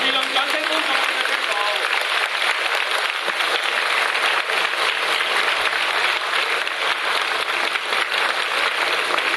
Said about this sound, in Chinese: 恭送堪布， 我们给大家起立，以热烈的掌声，我们恭送索达吉堪布。